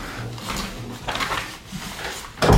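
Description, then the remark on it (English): A door is pulled shut: some soft scraping and movement first, then a single solid thud as it closes. No one speaks. “You can pull that door in.”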